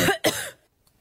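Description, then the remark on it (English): Two quick coughs in a row, the second slightly sharper, followed by near silence with a faint soft click at the end. No talking. “Here's your cough.”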